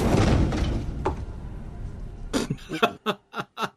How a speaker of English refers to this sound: Things best left behind a closed big metal door. Which they're going to open. You know they're going to open it.